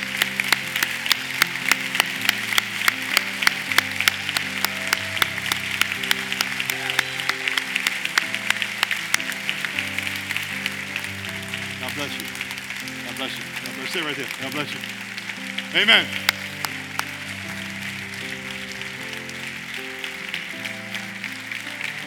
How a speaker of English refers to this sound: Come on. Come on. Let's give him a hand. Let's give him a hand.